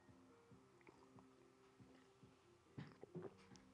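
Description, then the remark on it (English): A couple of quiet slurping sips of tea with soft mouth and swallowing noises near the end, set against a faint steady hum and no talking. “Sorry, I'm going to have to take a little sip of my tea here.”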